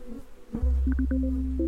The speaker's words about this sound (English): And I am in a bee suit, swarmed by angry insects, standing next to a giant almond orchard in central California. As you can hear, the bees were not very happy to be disturbed. You can hear them kamikazing every now and then into the microphone.